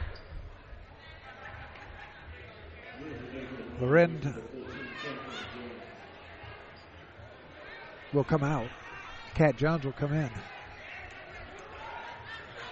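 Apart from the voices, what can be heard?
crowd chatter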